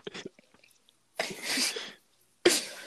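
A hand smacks down on a table once, a loud, sharp slap that fades quickly. Before it come a few faint clicks and a longer rushing, breathy burst.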